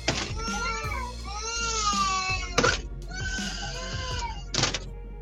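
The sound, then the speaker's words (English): Several children wail and scream together inside a house, high-pitched cries rising and falling continuously, with a few sharp louder shrieks and thumps, sounding muffled. “I don't care what they scream about in there.”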